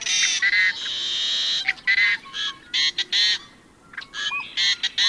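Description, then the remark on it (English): Harsh, raucous growls, wails and whistles of a yellow-headed blackbird, a western bird: a long buzzy wail followed by a series of choppy, grating notes and thin whistles, loud with no talking. “Equally arresting are the raucous growls, wails, and whistles of another western bird, the yellow-headed blackbird.”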